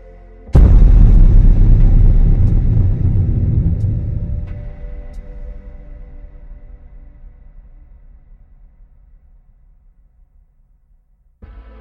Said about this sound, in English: My moment of revelry is broken by a loud noise. It sounds like a crack of thunder, only more echoing. Not right in some way.